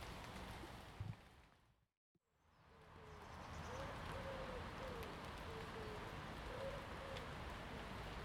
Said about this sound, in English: Wood pigeons. That cooing always takes me back to my grandmother's house